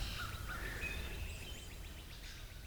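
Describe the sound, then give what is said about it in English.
Several wild birds, including a cardinal, a dove, crows and chickadees, chirp and call outdoors in a backyard with a small pond, short repeated notes overlapping against a steady low rumble of background noise, with no one talking. “But after a few moments, we hear them. Cardinal. Dove. That's a cardinal. There he is. Crows.”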